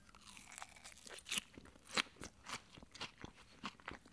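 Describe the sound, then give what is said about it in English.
A salad with big chunks of tomato and onion being chewed, with a steady series of crisp, bright crunches and crackles at an uneven rhythm, several sharper bites standing out, no talking. “If you were craving pizza, I might recommend you eat this salad.”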